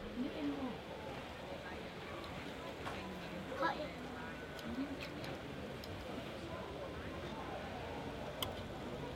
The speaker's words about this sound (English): I love the jeopardy of our friends over here are mooing.